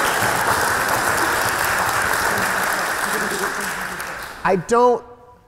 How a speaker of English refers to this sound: Please, yeah, go ahead and clap. Clap.